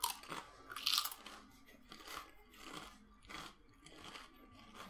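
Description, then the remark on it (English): Loud crunching as someone bites into and chews a crispy Dorito tortilla chip, with repeated sharp crackly bursts in a steady chewing rhythm and no talking. “I'm gonna eat this Dorito right quick.”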